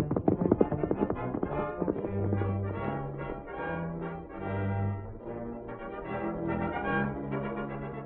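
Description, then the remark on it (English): A horse's hooves clip-clop at a brisk, steady trot as it carries its rider, clear, with a rapid even rhythm that carries through, while low sustained musical tones swell underneath. “Fella, you're carrying me to Carl Faber's place as fast as them spavin legs of yours will get us there.”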